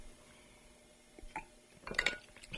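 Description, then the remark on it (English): Someone takes a drink of water from a glass: a soft knock, then a brief cluster of bright, ringing glass clinks near the end, all fairly quiet with no talking. “Excuse me, I'm going to take a drink of water.”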